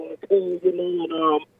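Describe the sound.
A thin, tinny voice over a phone line breaks up, with brief dropouts interrupting the speech so its words are garbled and unclear.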